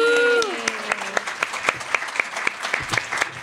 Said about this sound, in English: Round of applause